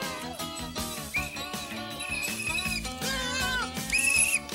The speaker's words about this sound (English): That is the worst whistle.